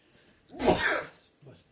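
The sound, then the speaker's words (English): A single sharp sneeze bursts out, broad and explosive for about half a second, followed by a faint breathy sound. “And again, we got the sneezes.”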